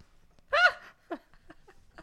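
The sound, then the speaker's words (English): A short, stifled yawn: one brief, loud, breathy voiced burst with a wavering pitch, followed by a few faint, soft breaths and mouth sounds. “Couldn't suppress the yawn.”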